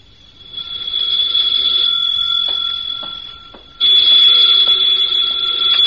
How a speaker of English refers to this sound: Then there was the phone. There was no mistake about that. That began late this afternoon.